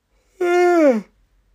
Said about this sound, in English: Knackered. Does yawning mean you're tired, though? What is yawning? It's weird.